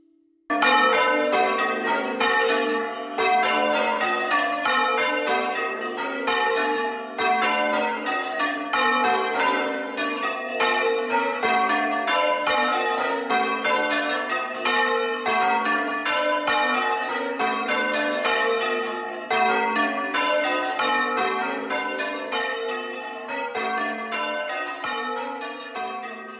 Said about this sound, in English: These bells are made of steel. They're rung at Christchurch, Chalford, and there are six bells. The tenor is 10 hundredweight, and they're in the key of G, and the method being rung was Yorkshire Block Delight Minor.